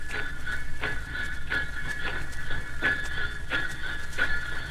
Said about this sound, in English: Who said there was no Santa Claus? Thanks for the jingle bells. Gee, they're getting louder. Louder.